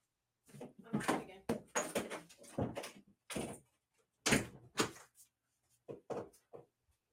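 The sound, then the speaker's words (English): An office door is handled and shut, with a run of clunks, creaks and rustling bursts spread over several seconds, separated by brief quiet gaps. “Shut the office door there.”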